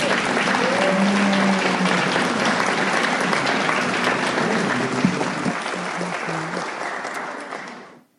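An audience at a recovery group meeting claps steadily for about eight seconds for a speaker who has just finished, a dense, loud patter of many hands with a few faint voices underneath, before the applause thins and fades out at the end.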